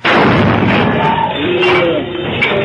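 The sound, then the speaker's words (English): Potassium lowered into water under a vent hood bursts violently with a sudden loud blast, then a steady roaring, crackling hiss lasts a couple of seconds, with faint whining tones drifting through it. “Oh, he put potassium in water. That's what he did.”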